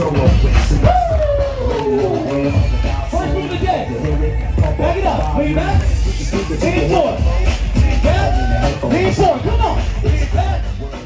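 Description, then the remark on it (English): A dense crowd at a protest against COVID-19 mandates and the vaccine passport system in Canada murmurs steadily. Many overlapping voices form a loud, continuous babble, with scattered louder shouts rising above the hubbub throughout. “We had a chance to dive into the crowd and talk with some of the attendees.”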